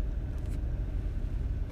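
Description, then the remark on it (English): Steady, muffled road and engine rumble from inside a moving 2014 Chevrolet Cruze, a constant low drone filling the cabin with no voices and no distinct events. “So I got my phone propped up in the little, I'm in a cruise, right? 2014 cruise.”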